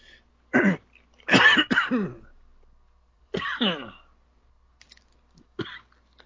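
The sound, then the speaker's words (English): A person coughs after swallowing wrong, in several harsh bursts, a couple in quick succession, then a pause and another throaty cough, followed by faint clicks and a small gulp-like sound. “Okay, I swallowed wrong. Give me just a second.”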